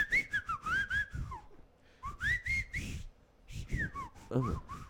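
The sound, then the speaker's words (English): A person whistles in short, speech-like phrases, the pitch swooping up and down in quick glides, fairly loud, with brief pauses between bursts and a low murmur underneath. “They just whistle at each other.”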